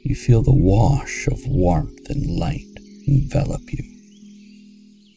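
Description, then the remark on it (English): A steady chorus of chirping crickets runs throughout, a continuous high shimmer beneath a calm voice speaking, then carrying on alone as the talking fades out, heard outdoors on a warm, sunny summer day. “You hear the sounds of birds calling in the distance, and the constant chorus of insects”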